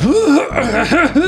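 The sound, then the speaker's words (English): A voice imitates a big, theatrical, super exaggerated cough: a few loud, voiced hacking bursts with rising and falling pitch over about a second. “gives like a way super exaggerated cough.”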